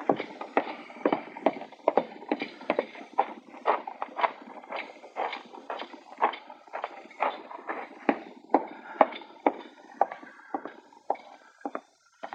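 Horse hooves clip-clop at a steady walking pace, a long run of sharp, evenly spaced knocks that stay clear, with no voices over them.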